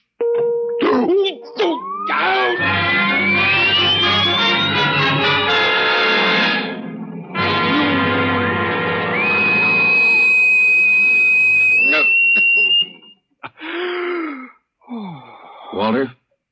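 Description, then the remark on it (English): A vibration torture device set to level 2: a rising electronic whine climbs steeply in pitch over a dense, harsh buzz while a man groans in agony. A steady high tone follows, then the noise cuts out, leaving short gasps. “So go ahead. Vibrate. Vibration level 2.”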